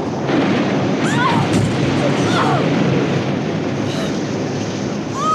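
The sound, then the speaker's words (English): Heavy waves crash over a boat deck in a loud, continuous roar of rushing water, with faint whistling wind tones rising and falling above the storm noise. “He went over with that first wave.”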